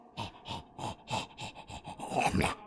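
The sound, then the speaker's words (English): A dog pants and snorts heavily, a fast, steady run of wet, raspy breaths with snuffling bursts, getting slightly louder toward the end. “I think that dog has a breathing problem or something.”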